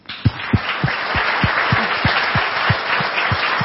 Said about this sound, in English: ¿Puede regalarle un aplauso al Señor? And can you give a warm round of applause to the Lord?